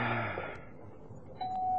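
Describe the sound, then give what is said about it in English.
A doorbell at Strang's place chimes: one bright tone rings out and slowly fades, then a second, clearer tone sounds near the end. Moderately loud, with no one talking. “Ring the bell.”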